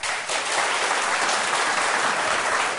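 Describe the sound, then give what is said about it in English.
A live audience applauds steadily to vote that a study of stars calling dark matter into question is the fiction, a dense wash of many hands clapping at an even, sustained level for a few seconds with no one speaking over it. “And if you think a study of stars calls dark matter into question, is the fiction, applaud.”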